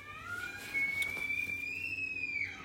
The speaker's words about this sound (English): Do you hear that? Do you hear that? That is a developed scream. That it was way worse when she was a baby.